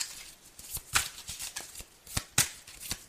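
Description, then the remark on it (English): A customized tarot deck being shuffled during a Pisces tarot reading, with a run of quick, crisp papery flicks and riffles, a few sharper snaps standing out, with no voices over it. “I want to use my customized tarot deck right quick.”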